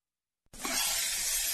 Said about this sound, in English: Ah, the copperhead snake. It hisses before attacking. But that's not a copperhead. That's the Sullivan's RV freshwater tank overflowing into their black one, which is backing into their vent pipe, making for a very different kind of attack.